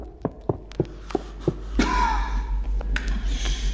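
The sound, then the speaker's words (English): Quick, evenly spaced footfalls of someone running desperately, followed by a sharp gasp and ragged, heavy breathing that continues to the end, from a video game's music disc. Fairly loud, with no talking. “And where number 13 was mildly unsettling, 11 outright screams to us that we're not in the overworld anymore, friends, starting right off the bat with desperate running, heavy breathing, and coughing.”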